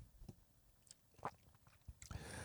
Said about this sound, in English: Take a sip of coffee to calm down.